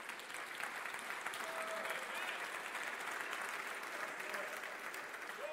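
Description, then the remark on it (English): Sustained applause from an audience, a dense, steady wash of many hands clapping at an even level throughout, with faint crowd voices mixed in. “I'm glad you're clapping, but I got a little follow-up with that.”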